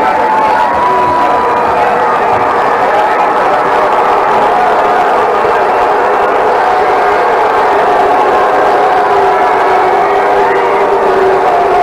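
A huge crowd of about 140,000 in the stands roars at night as Dale Earnhardt pulls into Victory Lane after a race, a dense, sustained wall of cheering and shouting that stays loud and steady for the whole stretch, with scattered higher whoops rising above the din.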